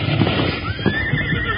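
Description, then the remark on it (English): A horse whinnies in a long, wavering neigh that rises and then falls, loud and steady for well over a second, with no talking over it. “we better tie up the horses. They might spook a little.”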